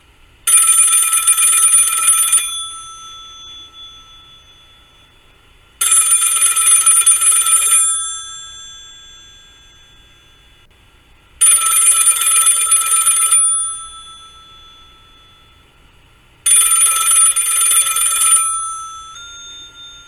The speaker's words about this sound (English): The phone rings. The coach moves toward it, but lets it ring a couple of times.